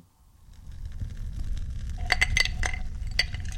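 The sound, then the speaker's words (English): Small hard resin dice rattle and clink against the inside of a glass, a quick cluster of bright taps over the low, steady crackling rumble of a fire. “You've caught me here sitting by the fire and enjoying a glass of fine resin dice.”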